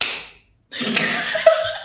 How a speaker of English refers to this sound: I'm just going to do a sync clap so I know when to sync them up.